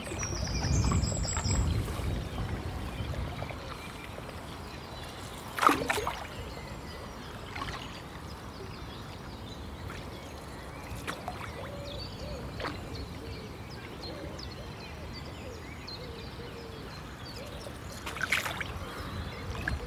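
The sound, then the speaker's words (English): Canoe paddle strokes dip and pull through river water at a steady pace on a windy morning, paddled fairly hard but as quietly as possible, with soft splashes and drips over a quiet outdoor background and occasional faint bird calls. “So it's a bit windy, so it's difficult to be quiet because you've got to paddle fairly hard, but we'll just go through this section for about a kilometre as silently as we can and hope we're lucky.”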